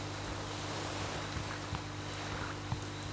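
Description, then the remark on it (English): A steady low engine drone with rushing water and wind noise as the first two motorboats come straight toward the listener on open water, holding at a constant level with no voices. “The first two boats are... Coming right for us.”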